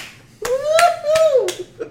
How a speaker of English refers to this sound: That reminds me of that clap scene in Evangelion. It was like, congratulations.